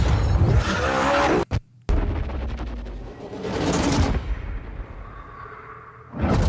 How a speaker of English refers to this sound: Very excited to show you the one of the blockbusters from Need for Speed Payback called The Highway Heist that shows that intense action driving experience.